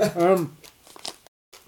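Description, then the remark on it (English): Crisp crunching of toasted hemp seeds rolled in brown sugar being chewed, a quick run of irregular crackles following a brief voiced sound, then a short silence and one more faint crunch. “Let's keep quiet and hear if you can hear the oaks crunching in the room.”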